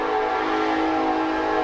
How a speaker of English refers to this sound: Train.